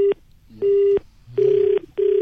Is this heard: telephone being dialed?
yes